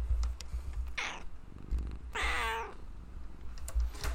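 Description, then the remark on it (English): A pet cat meows twice, two short, bright, wavering cries about a second apart, against a low background rumble. “And as Kitty co-host will tell you, we are back.”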